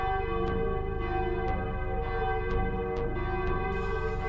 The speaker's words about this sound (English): And all of you, simultaneously with full recollection of what had just occurred, 7:59, you begin to hear the chime ring again.